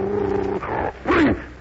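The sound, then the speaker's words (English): A bloodhound gives a low, drawn-out growling whine, then a short pause and one loud bark that slides downward in pitch. No one speaks. “That's a nice name, and you're a bloodhound, are you?”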